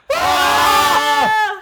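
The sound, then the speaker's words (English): Several people let out a loud, sustained scream together after a countdown, imitating the scream from the Zach Braff movie, a single burst lasting over a second with strained, overlapping voices that cut off abruptly. “I don't think I've yelled in a while.”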